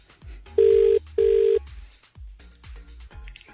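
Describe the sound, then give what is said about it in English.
A telephone ringback tone on an outgoing call to the first number drawn gives a quick double ring, two short steady buzzing pulses in succession. It sounds clear and fairly loud over faint background bumps and clatter. “Let's call our first number. Here we go, and we'll see if this Fingers person crossed.”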